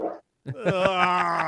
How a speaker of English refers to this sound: Chug it. It's not even gulping anymore. There we go. It's a nice big gulp. Big mouthful first.